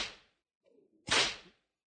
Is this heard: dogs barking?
no